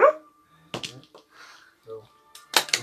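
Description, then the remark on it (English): A small dog lets out two short, sharp barks about two seconds apart, loud, with faint murmured voice sounds and a low hum in between. “My little dog.”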